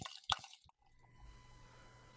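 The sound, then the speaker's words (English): A bottle of 6.5% sparkling cider, a blend of Bramley, Discovery and Spartan apples, is opened with a few sharp clicks and pops, then a soft, steady fizzing pour with a faint low hum beneath it. No voices. “It's 6.5% and it's sparkling. So, oh, good sound.”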